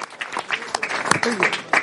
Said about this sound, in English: And then you can join the preparation team that is doing great work over the years, and let us thank them and give them a round of applause.